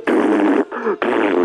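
A loud, buzzy fart sound rasps out in three bursts: a long blast, a softer sputter, then another strong blast, with no one talking.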